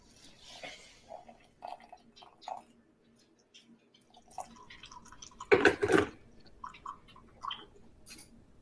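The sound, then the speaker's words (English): Hot water is poured into a container of honey, with a few scattered drips and small liquid sounds before a short, louder splashing pour near the end. No talking. “And then you're going to add that same amount of hot water.”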